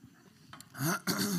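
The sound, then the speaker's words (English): Someone with a cold clears their throat and coughs: two rough, loud bursts in quick succession after a quieter, breathy lead-in, with no talking. “Might need a cough drop.”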